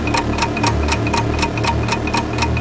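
A game show countdown clock ticks steadily, its sharp, evenly spaced ticks repeating about three times a second over a low, sustained musical drone, loud with no voices.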